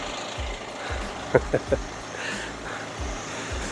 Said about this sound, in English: Okay, let's get away from that noisy old truck.